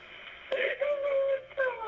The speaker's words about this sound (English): Did you hear it? Yeah. She's like crying and saying, she needs help. And yeah, she's crying, saying she needs help. She told dispatchers that her husband was shot.